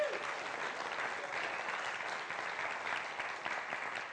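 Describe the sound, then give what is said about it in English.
An audience applauds steadily, a dense wash of many hands clapping at an even level for the whole stretch, with no voices breaking through. “Go clap for him, okay?”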